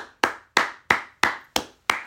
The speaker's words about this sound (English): I know I'm the only one clapping, but if you listen hard enough, God's clapping too.